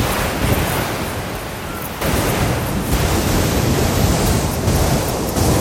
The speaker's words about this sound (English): I hope you don't mind the ocean sounds. I'll be quiet for a second so you can hear it.